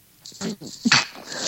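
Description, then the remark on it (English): A stifled sneeze: a few short breathy, voiced catches, then one sharp hissy burst, trailing off into a breathy exhale. It is moderately loud and no one talks over it. “I just sneezed.”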